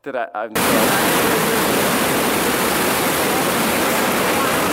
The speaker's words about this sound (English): this is the actual video of the high tides of the Jordan River that they were standing, all right? This is a video of it, all right? So this is 28 seconds for you to see what it was actually like.